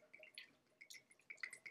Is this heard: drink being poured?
yes